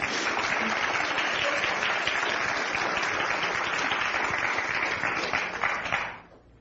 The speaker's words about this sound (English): So a warm round of applause for them as well.